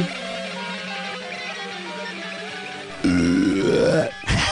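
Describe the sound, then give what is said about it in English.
A loud, drawn-out belch that rises in pitch, breaking in after a few seconds of steady tonal background, then a brief pause and a short final burp. “We start off every podcast with the ceremonial belch.”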